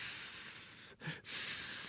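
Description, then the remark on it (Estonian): A person hisses through their teeth in a long, steady, breathy stream, breaking off briefly midway before hissing again; fairly loud, with no talking. “Mida sa susised?”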